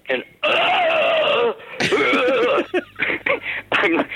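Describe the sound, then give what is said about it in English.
A voice hums a garbled, wordless idea for a song: one long wavering note, a short pause, then a run of choppy, uneven vocal bursts that rise and fall in pitch. “Can you hum that again?”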